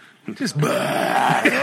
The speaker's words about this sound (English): But Dad, you really just walk up here and burp like a freaking disgusting dragon.